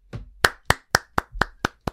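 A short round of applause made of about seven sharp, crisp hand claps in a steady, even rhythm, fairly loud and with no voices.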